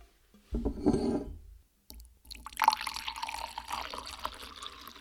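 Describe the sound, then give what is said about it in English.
Mulled wine with added orange and lemon bitters pours into a cup, a brief splash and clink followed by a steady, rising trickle of liquid filling the cup, with no talking. “All right, here we go. I'm going to pour it in.”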